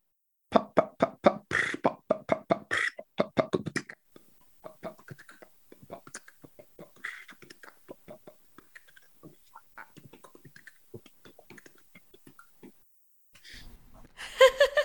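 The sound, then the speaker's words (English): A performed imitation of rain, done over Zoom: dense, rapid taps and patters start loud, then thin out into sparse soft clicks and hissing, before a sudden louder burst of noise at the end. “I wrote a Twitter bot to make rain sounds because it pleased me.”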